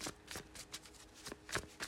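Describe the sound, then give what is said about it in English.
Crisp tarot card shuffling: a rapid series of papery flicks and riffles in uneven bursts, fairly quiet and with no voices over it. “I am shuffling the Tarot Mudra.”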